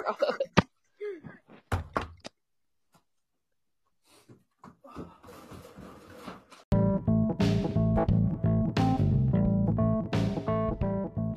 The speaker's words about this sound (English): I got to go open a door.